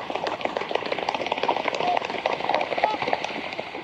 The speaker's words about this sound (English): This flock of trumpeter swans is coming in for a splash landing at Magnus Lake, just outside of Heber Springs in Arkansas.